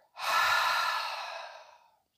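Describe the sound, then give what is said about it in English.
One slow, deep breath during a guided breathing exercise: a soft, airy rush that starts abruptly, then gradually fades away over about two seconds, with no one talking. “Breathing in, I am. Breathe out, fire.”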